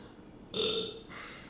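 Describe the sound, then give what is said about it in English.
A single loud burp, drawn out for about half a second with a tonal, resonant quality, followed by quiet background noise. “I'm just like her for real, because she be burping like that.”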